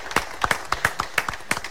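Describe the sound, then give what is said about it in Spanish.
A burst of sharp hand claps, roughly a dozen in under two seconds, arriving in an uneven, overlapping rhythm like a few people applauding together, with no voices. “¿Cómo no vas a aplaudir? Yo aplaudo.”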